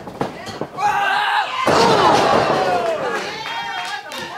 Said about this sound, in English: Got the head hook. Got her wrenched back. And you can hear those. You can hear those blows on her shoulder right now. Absolutely.